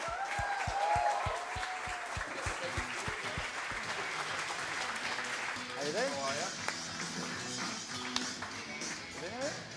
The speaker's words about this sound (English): There we go, another big round of applause everyone for our three special guests.